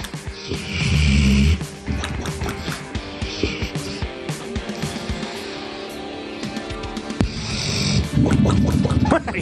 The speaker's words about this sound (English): This is a dog snoring, and then you get... Sounds like a bong hit.